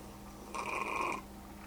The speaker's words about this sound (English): my cat's howling here. She's like... what cat is that? Hold on. It's Mary Jane.